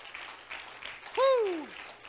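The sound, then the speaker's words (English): A crowd claps their hands to the Lord on a morning, a dense, continuous patter, and partway through the preacher lets out a loud rising-then-falling whoop over the clapping. “Come on, clap your hands to the Lord this morning.”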